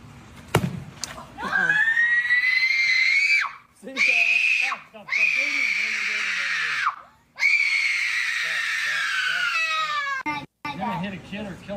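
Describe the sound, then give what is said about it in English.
A little boy screams loudly and repeatedly in long, high-pitched wails, broken by brief gasping pauses, after a sharp knock at the start, as his brother hits the ball over the wall. “So the brother hits it over the wall, and the little boy just screaming.”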